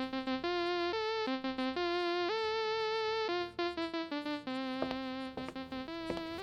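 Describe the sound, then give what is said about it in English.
An old wristwatch alarm goes off, playing a thin, buzzy electronic melody of quick notes that step up and down in pitch, repeating steadily for several seconds with no talking. “And listen, the alarm still works.”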